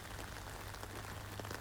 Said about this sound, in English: Didn't know it was going to be raining this morning, though.